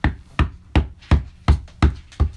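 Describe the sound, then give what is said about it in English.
Loud knocking on a door, seven heavy, evenly spaced thuds in a steady, insistent rhythm, each blow sharp with a deep booming body. No voices are heard. “The knocking becomes more persistent on Alta's door.”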